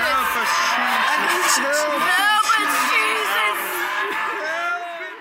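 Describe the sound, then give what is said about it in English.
Word of Faith church members yell out blasting prayers all at once, a dense wall of overlapping loud voices shouting and wailing without pause, steady and intense for several seconds before easing slightly at the end. “Blasting, which is how Word of Faith members pray, it's almost unbearable to play on radio.”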